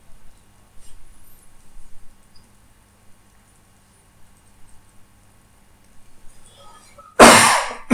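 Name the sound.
coughing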